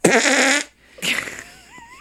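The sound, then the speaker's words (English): A loud, buzzy fart lasting about half a second, followed after a short pause by a second rougher, sputtering burst that trails off with a faint whistling tone. “Farts are hilarious.”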